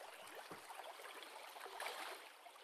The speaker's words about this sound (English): So in this moment, as you get closer, you can hear the sound of the stream.